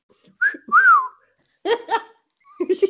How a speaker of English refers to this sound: I appreciate it. Thank you. It wasn't, I wanted to whistle you.